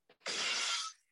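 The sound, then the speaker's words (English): Glass shatters with a loud, bright crash, preceded by a brief small knock, then a sustained burst of tinkling shards that fades out within about a second, with no voices. “The glass break.”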